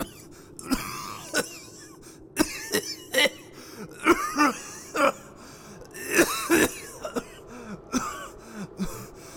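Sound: repeated coughing fit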